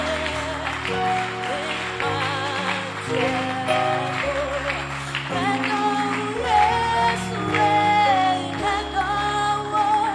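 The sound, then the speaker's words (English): An audience claps their hands steadily for people coming forward to the preacher to give their lives to Jesus Christ, under loud worship music, the clapping a continuous rattling wash beneath sustained chords and a shifting bass line. “Clap your hands for them as they come.”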